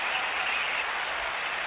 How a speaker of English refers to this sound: So you know how we like to do. Get on your feet and give yourself a round of applause.